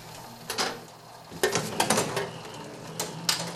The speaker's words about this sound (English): And the paper's rolling onto the plate. And then I pick the paper up, and I roll the press back, and then I have my print.